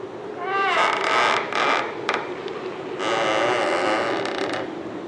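A big wooden door at the bottom of a tall tower creaks open slowly, starting with wavering, groaning pitch sweeps and stretching into a long, loud, grinding creak that lasts several seconds, with no one talking.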